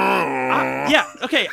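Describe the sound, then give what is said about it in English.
A voice imitates a foghorn with one long, steady, low droning hum that holds its pitch for almost a second, then breaks into a few short, wobbling vocal bursts. “The stinky foghorn sound.”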